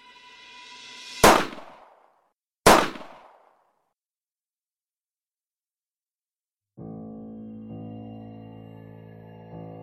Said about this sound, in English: The vast mausoleum-like silence that followed the echo of the gunshots was only relieved by the wail of the child.